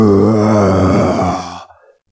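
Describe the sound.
A low, guttural roar voiced by a person imitating an alpha gargoyle: one loud, rumbling growl held for about a second and a half before trailing off into silence.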